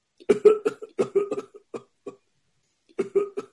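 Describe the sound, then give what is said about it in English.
A fairly loud coughing fit: a quick run of harsh hacking bursts, a couple of isolated coughs, a pause, then another short cluster of coughs with some throat clearing. “You need to get take cough drop throat.”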